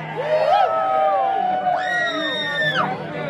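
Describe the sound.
An audience screams loudly for about three seconds, many overlapping shrill voices rising, holding long high-pitched wails, then dipping slightly near the end amid a steady crowd roar.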